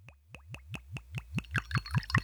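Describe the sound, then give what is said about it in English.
A drink glugs steadily out of a bottle into a glass, about a dozen quick gurgles that speed up and rise in pitch as the glass fills, with no talking. “Let's see if I can pour it without pouring it over myself.”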